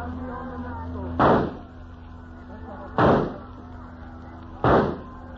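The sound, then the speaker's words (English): Three loud gunshots ring out at an even, unhurried pace, each a sharp crack with a short trailing decay, over a steady low droning hum; the shots are fired at a man in a boat bobbing on the sea. “Nobody will hear the shots.”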